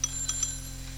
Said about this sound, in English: Oh, let it ring. Let it go on ringing. It's a trick of some kind, and I won't answer it. I won't, even if it goes on ringing all night.